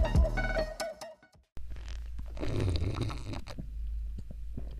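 A brief tonal hum cuts to a moment of silence, then a sputtering, gurgling attempt at slurping a fizzy drink, with wet, noisy bursts that fade without a clean slurp.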